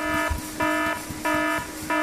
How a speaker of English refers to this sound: For God's sake, turn that verschluggener alarm off, somebody. Somebody!